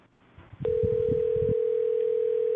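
A steady, loud telephone tone comes on the line after a click and a few low muffled bumps, humming continuously as an outgoing call rings through the earpiece.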